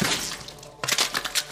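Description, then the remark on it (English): A steady wet hiss gives way to a sudden squelching pop as a creature rips out of a body's chest in an explosion of blood and viscera, followed by a quick run of splattering, crackling bursts that stay fairly loud until the end. “When the struggling creature rips out of the chest, an explosion of blood and viscera coats the area with a wet and audible pop.”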